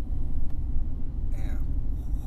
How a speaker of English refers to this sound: Listen to that engine.